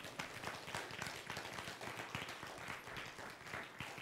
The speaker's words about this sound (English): Give God a big hand clap.